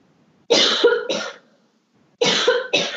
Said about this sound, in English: Wait, sorry, one second. I have to cough again.